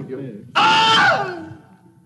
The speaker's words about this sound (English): And so this is what the recording session sounded like, because a guy had to have his leg eaten by an alligator. So, man getting bit by an alligator and he screams.